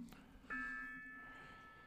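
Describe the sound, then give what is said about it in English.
A single soft metallic strike of a small gong, used as a sound effect, rings out, its bright tone sustaining and slowly fading over about a second and a half, fairly quiet and heard alone. “Baby gong.”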